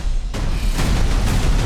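Explosions from a movie trailer starring Kevin Hart, Kate Blanchett, Jack Black and Jamie Lee Curtis: a sudden roar of loud explosions kicks in after a brief quiet moment, followed by a continuous rumbling barrage with repeated blasts close together and no voices.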